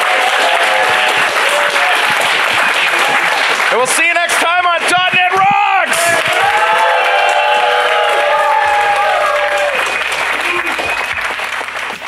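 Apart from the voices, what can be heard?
audience applause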